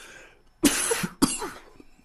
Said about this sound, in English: Done got hot up here, got the coughing.